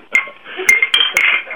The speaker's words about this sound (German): Aber du kannst doch mal uns anstoßen.